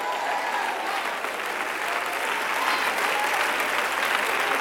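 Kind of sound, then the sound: crowd, audience applauding and cheering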